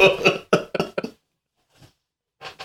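A loud fit of coughing: four or five rapid harsh coughs in a row, a short pause with a faint cough, then another cough starting up at the end.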